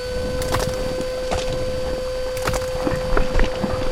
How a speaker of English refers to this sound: Vacuum cleaner engaged!